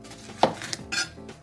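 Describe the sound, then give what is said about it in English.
A knife chops through half a red bell pepper against a cutting board, giving about four sharp, crisp knocks at an uneven pace with no talking. “I'm going to chop up this half a bell pepper.”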